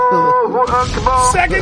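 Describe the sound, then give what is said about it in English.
A sustained wavering, voice-like tone plays, then a secondary explosion sound effect bursts in partway through, a loud rumbling blast that keeps crackling beneath the tone to the end. “Secondary explosion.”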